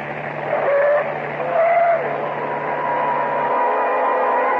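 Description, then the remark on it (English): A car engine roars while tires squeal in two sharp bursts as the car runs through a traffic light straight at a pedestrian crossing the street, then the motor keeps droning steadily. There is no talking. “A car was running through the light directly at me.”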